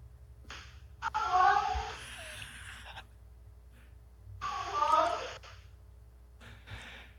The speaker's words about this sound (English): Demon cat. He flat out said hello. Like it, and it's not even what he said. It's even how he said it. He said it like he like somebody's here.